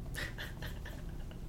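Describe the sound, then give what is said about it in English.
A small dog pants quickly and whimpers softly, a run of short, breathy bursts with thin high-pitched whines, faint, over a low background rumble. “Whereas because I'm, like, this, like, fun-sized grumpy prick with a tiny dog, people are like, that's pretty funny.”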